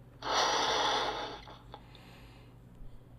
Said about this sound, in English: Well, I'm going to blow up a balloon.